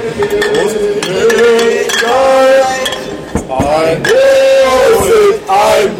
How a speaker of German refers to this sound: Oh, ein Prosit. Sorry, jetzt müssen wir trinken. Sorry, Jungs.